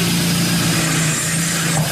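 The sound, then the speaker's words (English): A locksmith's power drill runs steadily for two seconds, its motor giving a loud, constant whirring hum with a gritty grinding edge as it bores into a metal lock. No one speaks. “The power tools are coming out, everyone.”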